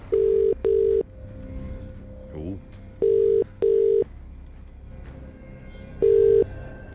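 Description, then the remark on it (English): Telephone ringback tone on an outgoing call to a randomly selected listener for a cash prize: steady, loud double bursts, 'ring-ring', repeating about every three seconds, three cycles in all, with faint background hum and no clear talking. “Remember, you need to answer the phone within five rings and know today's featured artist.”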